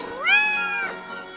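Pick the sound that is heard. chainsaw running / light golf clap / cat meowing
cat meowing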